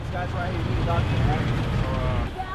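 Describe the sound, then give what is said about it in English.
Steady low engine rumble from idling traffic fills the background at a roadside checkpoint for the Florida Keys in Monroe County, Florida, staffed by local police, fire and public works employees, with indistinct voices talking over it throughout. “This sound of the checkpoint comes from the Keys News Service.”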